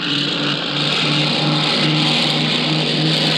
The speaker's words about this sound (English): That's a C-54 roaring into the dawn, recorded on the scene in Denmark.